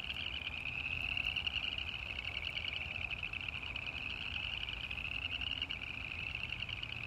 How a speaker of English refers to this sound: Can you hear them? It's the spring peepers. They just got quieter because they could hear me.